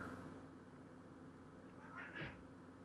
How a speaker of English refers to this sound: So... Awkward pause. Yeah, sorry. My cats just are screaming at each other.